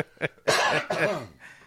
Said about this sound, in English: Sorry, I just stumbled through that because I had a cough going in the back of my throat.